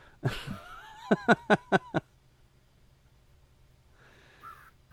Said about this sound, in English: Okay, random crow. Oh, sorry, I didn't know you could hear that. Random crow is random.